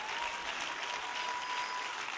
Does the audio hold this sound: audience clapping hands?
yes